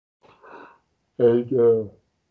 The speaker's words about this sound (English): And …, I don't know what the heck you're doing. You need to quit that with all that yawning, man. That's not a good look.